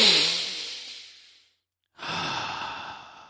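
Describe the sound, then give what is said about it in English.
A long, deep breath: a breathy rush that fades away, a brief silent pause, then another steady airy breath. No talking. “Take a long deep breath and focus on your breathing in and out, in and out.”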